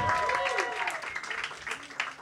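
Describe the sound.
A crowd applauds in a steady wash of clapping that fills the whole moment, with a voice speaking faintly over the applause.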